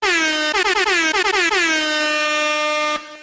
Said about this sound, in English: Oh, yeah, hold on. Let me get some air horns going for you, son.